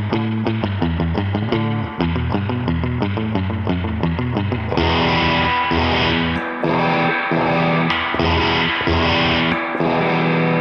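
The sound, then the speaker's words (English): An electric guitar played through a Princeton tube amp plays a steady, rhythmic riff of repeated chords with a warm, slightly driven amp tone, then opens into fuller sustained strumming with a touch of reverb. No voices. “Here's a Princeton.”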